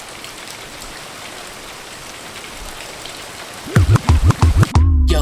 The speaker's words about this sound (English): The rain it falls, and the rain it drops. The rain it comes, and the rain it stops.